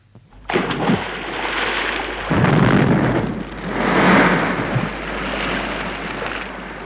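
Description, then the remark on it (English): A bomb thrown into a river explodes with a sudden, loud burst in the water after a brief silence, followed by several seconds of roaring, churning splash and spray that surges twice before fading slightly. No voices. “I'm going to throw it into the river.”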